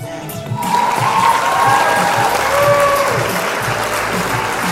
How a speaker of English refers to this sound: What kind of clap was that? Golf clap?